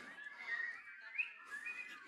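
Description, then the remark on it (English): A person whistles a short, wavering tune, the theme of the Andy Griffith Show, a TV show from 1963. The thin high notes slide from pitch to pitch in a continuous melody, fairly quiet and a little shaky, with no talking over it. “Can anybody whistle it for us?”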